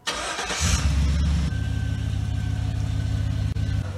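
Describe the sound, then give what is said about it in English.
A truck engine turns over and catches, then settles into a loud, steady low rumble, idling and rolling as the truck drives over a breast implant, with no voices and no pop or burst. “So after yesterday, where I made a video putting a breast implant through a series of torture tests and it survived, everyone was like, "Run it over with your truck."”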